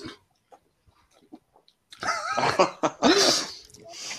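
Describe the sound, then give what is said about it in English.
A voice imitates a dog playfully growling while playing tug of war with a sock: about two seconds of faint shuffling, then a loud burst of snarly, huffing growls that rise and fall. “keeps coming up here and challenging me to a tug of war with my sock.”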